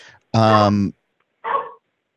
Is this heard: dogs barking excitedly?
yes